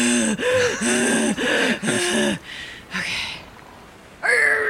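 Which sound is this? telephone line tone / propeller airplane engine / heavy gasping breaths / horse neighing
heavy gasping breaths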